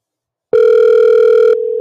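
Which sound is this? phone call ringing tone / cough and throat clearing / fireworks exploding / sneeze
phone call ringing tone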